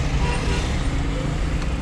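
street traffic

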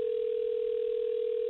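telephone dial tone

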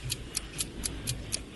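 ticking game clock timer

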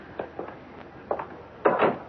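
door opening or closing

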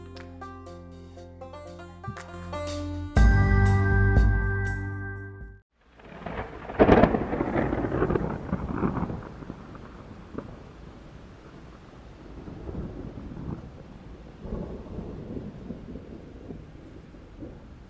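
thunderstorm with thunder claps

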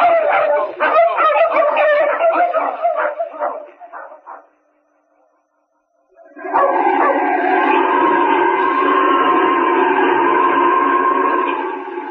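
dogs barking

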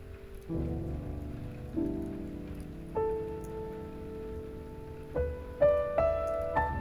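gentle rain falling

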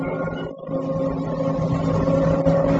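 car engine driving

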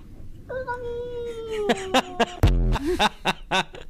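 cat meowing

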